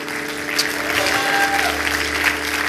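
A crowd applauds steadily, a dense wash of many hands clapping at once, fairly loud and continuous throughout with no pauses or voices standing out.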